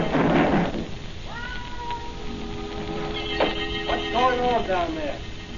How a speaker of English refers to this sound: Plain cat, make as much noise as a garbage collector.